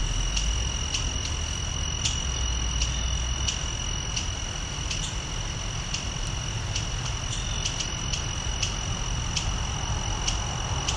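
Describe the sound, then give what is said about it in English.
Agitated bunting calls beside a fairly large creek: a steady series of sharp, brief chips repeating about every half second, set over a constant high-pitched insect drone and low background rumble. “These buntings are very unhappy.”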